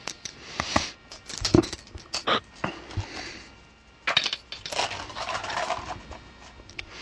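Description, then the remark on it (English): Dice clatter across a table during a game in several bright bursts of sharp clicks and rattles, with brief pauses between rolls and a longer, busier tumble toward the end. “And it's die time.”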